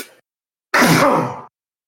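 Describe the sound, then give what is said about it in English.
A single loud sneeze bursts out suddenly, a harsh, breathy blast with a voiced tone that slides downward and fades within about a second, following a brief faint sound and a short silence. “God bless you.”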